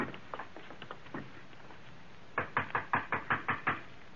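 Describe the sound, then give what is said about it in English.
Soft, scattered taps give way to a loud, steady run of about eight sharp knocks on a door, evenly spaced, with no voices. “Who is it? You'll open the door”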